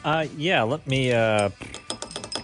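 A voice warbles in wavering, sliding tones, then a quick series of sharp metallic clicks and clinks follows as keys work a cage lock.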